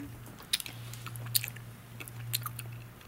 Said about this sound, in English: I want them to know I'm chewing the jelly bean, so I'm doing it on mic.